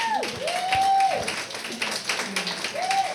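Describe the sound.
An audience claps steadily throughout for the third and final finalist of a competition, a dense crackle of hands, with a couple of sharp high whistles and some cheering voices rising over it.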